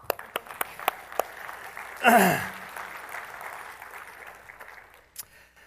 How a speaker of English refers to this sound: Thank you. You can clap.